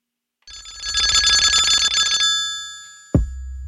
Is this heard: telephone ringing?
yes